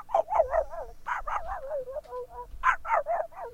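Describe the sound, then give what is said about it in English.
A person on The Stephanie Miller Show imitates a faraway dog barking: three quick bursts of muffled, yappy barks separated by short pauses, with a whiny, wavering tail between them. “Faraway dog?”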